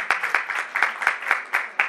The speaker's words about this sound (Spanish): Por favor, si pueden alzar la mano las personas anglos que están aquí. Para ustedes, primero mí. Y luego mi aplauso.